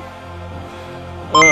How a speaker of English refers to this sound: Calculating computer activated. Computers, beeps.